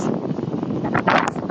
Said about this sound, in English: So I'm approaching Broadway and MacArthur, which is the place that I see. It's going to get really windy. I might have to do an interview with somebody outside of the wind because it's windier today.